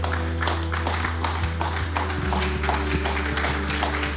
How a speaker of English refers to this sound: Okay. I love the golf claps. I always make fun of you for that.